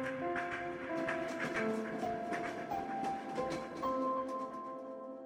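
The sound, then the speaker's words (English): Passenger train wheels click over rail joints in a steady, repeating rhythm, moderately loud, with sustained droning tones running underneath throughout, on a trip to East Boulder. “Just that subtle clickety-click, clickety-click of the track.”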